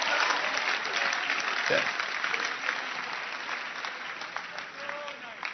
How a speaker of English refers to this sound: I was expecting a hand clap like a little sister clapping a hand.